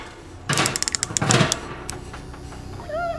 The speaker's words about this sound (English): Keep knocking the wall. The door will open.